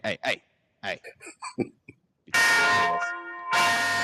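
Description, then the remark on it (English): Brief vocal sounds, then a loud bell rings out with a bright sustained tone, pauses for a moment, and rings again. “So, confession? Ring your funky ass bell.”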